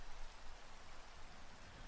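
Steady rain falls in an even, unbroken hiss with a soft patter of drops, fairly quiet and constant throughout, with no voices or other sounds.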